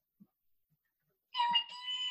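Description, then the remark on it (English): A sudden high-pitched squeal, a voice imitating a small creature's squeak, sustained for under a second after a near-silent start with a couple of faint taps. “Yes, you guys can hear this high pitched windows squeal.”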